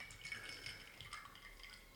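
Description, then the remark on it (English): Indian tonic water from a 250 milliliter can being poured into a glass, a quiet, steady fizzing trickle with soft bubbly crackles lasting a couple of seconds, with no talking. “Yeah, Indian tonic water in a 250 milliliter can. And yeah, here we go.”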